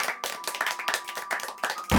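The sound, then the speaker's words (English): A brief round of applause for spotting the missing dandelion oil: quick, sharp, irregular hand claps packed closely together at a steady moderate loudness, with no voices, ending in a slightly louder final burst. “I was waiting for your applause.”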